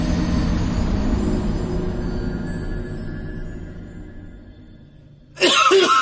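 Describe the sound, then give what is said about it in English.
A heavy bout of coughing: several seconds of rough, muffled hacking that gradually eases off, then a sudden loud, harsh burst right at the end. “I was holding that back for a long time. Okay, sorry. I was like, Cole, shut up. Let me cough.”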